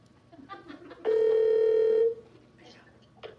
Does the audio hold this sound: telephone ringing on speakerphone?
yes